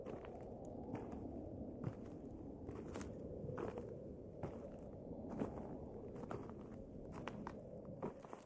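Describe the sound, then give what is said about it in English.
Footsteps crunch along at an uneven pace at night, each step a short, crisp impact, over a steady rushing night wind, with no voices. “Suddenly, I heard footsteps.”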